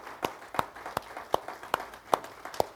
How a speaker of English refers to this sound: Yeah, it's okay to clap this morning.